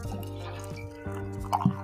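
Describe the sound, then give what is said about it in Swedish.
Water trickles and splashes into a cup holding instant coffee powder, a steady pour with dripping, plopping sounds and a rising fill tone, fairly quiet. “Okej, nu har vi min kopp här med kaffepulver i och nu kommer vatten.”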